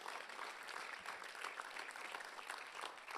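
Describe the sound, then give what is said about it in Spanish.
An audience applauds steadily, a dense wash of many hands clapping at an even, sustained level throughout with no pause or break, giving applause to the Lord during a sermon. “Damos ese aplauso al Señor, está bien.”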